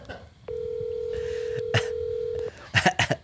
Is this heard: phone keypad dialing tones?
yes